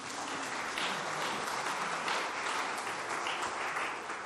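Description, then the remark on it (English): A crowd applauds steadily, many hands clapping in a dense, even wash of sound that holds at a constant loud level throughout, with no voices standing out. “If you wait till the end to clap, we get to the cake faster.”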